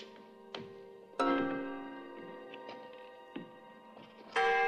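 A gong is struck several times at uneven intervals, each hit ringing out with a rich, sustained metallic tone that lingers and overlaps the next. The strikes are moderately loud, with no voices.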